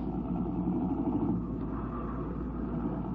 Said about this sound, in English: He threw the car into gear and then they were worming their way through the 8:30 traffic.